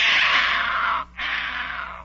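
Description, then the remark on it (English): A voice actor imitates the Cheshire Cat with two long, raspy hissing screeches separated by a brief pause, loud, with no talking. “he was making cat noises, but more than one of them sounded like a vulture had swooped down”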